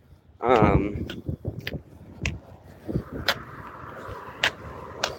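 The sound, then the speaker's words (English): Outdoor street traffic with a steady low rumble of passing cars, a loud whining vehicle sweeping by near the start, and scattered sharp clicks and knocks from the road around it. “It's very good to hear cars. It can tell you a lot, not just about where you are, but about the kind of street you're walking on.”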